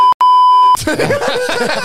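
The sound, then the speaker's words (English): A loud, steady censor bleep tone, used to bleep out a gang name, sounds alone with a quick break near the start, then cuts off as lively overlapping talk and laughter take over. “Oh, but we can bleep out the gang name.”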